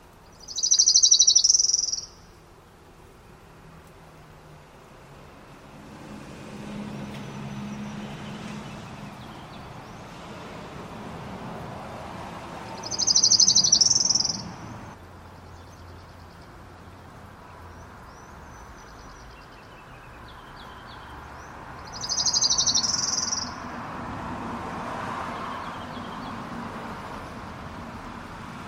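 Three short, high trilled songs of an orange-crowned warbler ring out about ten seconds apart, each clear, over a steady wash of outdoor background noise.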